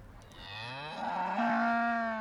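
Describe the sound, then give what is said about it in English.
A cow among many cows lets out a long, loud moo that rises in pitch and holds steady, rich with harmonics, with no voices present. “That's a lot of cows.”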